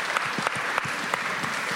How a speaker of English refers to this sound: Thank you, …. Keep clapping for …. Yeah. Do it loudly.